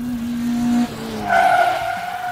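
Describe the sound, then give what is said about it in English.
An Indy race car's engine drones at a steady high pitch, then gives way to a loud, shrill tire squeal as the car skids, lasting a second or so with no one speaking. “did you drive an Indy car here today?”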